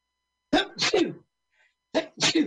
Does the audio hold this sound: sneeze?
yes